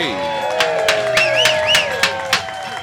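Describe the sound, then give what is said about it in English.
A live crowd of Gumption County residents at a fair on a Monday cheers and claps, with sharp bursts of applause and a few high whistles rising over a steady, fairly loud murmur of voices. “What a crowd for a Monday.”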